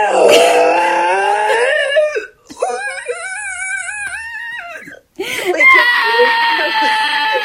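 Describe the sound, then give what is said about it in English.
A voice imitates the high, piercing screech of eggnog being steamed with a milk wand: three loud, wavering, siren-like squeals with short breaks between them. “the real eggnog, really has a screech that you'll never forget if you've worked in coffee”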